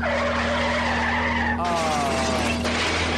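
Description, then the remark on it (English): A car engine drones steadily while the tires squeal and skid on ice in long, wavering tones, sliding in pitch partway through, as the car travels at 85 miles per hour. Loud and continuous for a few seconds. “Play the engine of the car, right?”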